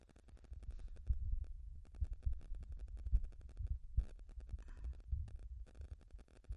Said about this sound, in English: That little bit of static is bothering me. I have to get another microphone.